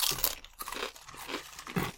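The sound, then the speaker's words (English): Crisp crunching of a thick kettle potato chip being bitten and chewed, a rapid series of brittle cracks and crackles repeating over about two seconds with no talking. “Here comes some kettle chip. Good. This will be a good crunch, though.”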